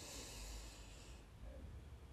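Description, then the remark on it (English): A slow, deep breath drawn in through the nose during a box breathing exercise, soft, with a breathy hiss that lasts about a second before fading into near silence. “So let's go ahead and start with our box breathing. So take a deep breath in, 4 seconds.”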